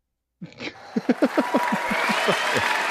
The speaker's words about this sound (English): Wow. I need an applause button.